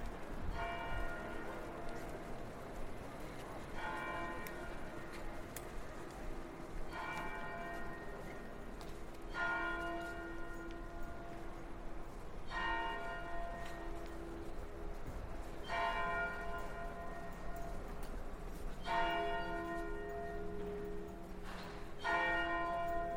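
Bells of a red brick church in Soho, London, near Charing Cross Road, ring out in a slow, steady peal, each resonant stroke every few seconds and lingering, over a constant hum of outdoor street noise.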